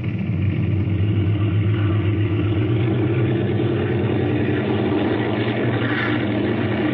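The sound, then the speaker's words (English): A steady, loud engine drone with deep low rumble and a constant mechanical hum from propeller plane engines running at high power as the plane takes off from runway 28 in a west wind, continuous throughout with no voices. “looks like the motors are going to run okay”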